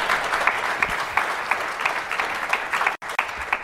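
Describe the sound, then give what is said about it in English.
Sustained applause from an audience for the panelists at the close of a panel discussion, a dense steady patter of many hands clapping at even loudness, with a brief dropout near the end before the clapping resumes. “Please give a round of applause to our panelists.”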